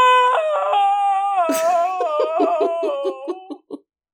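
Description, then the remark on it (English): A single person lets out a long, loud, anguished howl that cracks into breathy, sobbing bursts before trailing off; a narrator performing a howl of despair in a story reading after moving further away from the mic, heard alone. “The howl erupted from Simon.”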